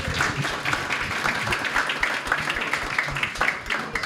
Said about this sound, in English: Round of applause.